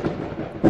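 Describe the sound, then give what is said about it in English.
A brief thunder sound effect introducing a lightning round game segment, a low, booming rumble swelling to a louder crack near the end of the short burst, with no voices present. “that's the sound. It's time for our lightning round.”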